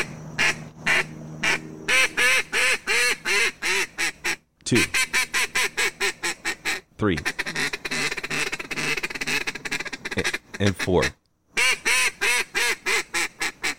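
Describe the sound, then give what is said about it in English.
A series of fake duck calls made by a champion duck caller imitating quacking, four separate bursts of rapid, rhythmic quacks, loud, with a brief voice counting between them. “Because they were all …. Those are all fake duck calls.”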